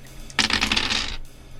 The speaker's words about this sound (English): Okay, so I'm going to roll my three ghosty dice.